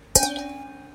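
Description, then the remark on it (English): Two lead-free crystal glasses clink together once in a toast, a bright sharp strike followed by a clear high ringing tone that sustains and slowly fades, with no talking over it. “You hear that? Yeah, it's singing. That's crystal. Uh-huh. Lead-free crystal.”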